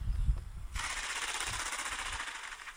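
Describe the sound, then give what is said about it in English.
Spruce grouse flutter flight and wing-clap display: a few low, muffled thumps, then a sudden burst of rapid, rhythmic wing whirring that throbs steadily for a couple of seconds. “That would be their flutter flight. Yeah. And their wing clap display.”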